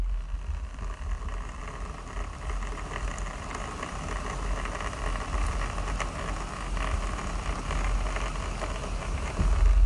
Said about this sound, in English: So if you hear, can you hear that? I'm going to hold my mic up to the window for a second. Just attune to the rain with me for a second.